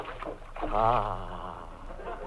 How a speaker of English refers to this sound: Listen to this man getting into his bathtub.